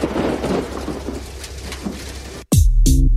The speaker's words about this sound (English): I've been asked, when do I feel the most comfortable? That's when it's cold and it's dark during a thunderstorm.